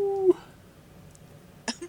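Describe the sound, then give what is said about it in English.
A short, feeble howl imitated by human voices, a thin steady tone that breaks off after a moment, followed later by a brief breathy burst like a cough or laugh. “That was a weak howl, guys.”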